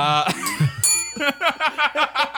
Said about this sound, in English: And the bell goes away.